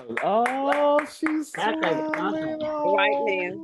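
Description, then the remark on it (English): A burst of quick, rhythmic hand clapping from an audience, mixed with loud voices calling out and cheering over it, the claps fading as the voices carry on. “Let's clap for”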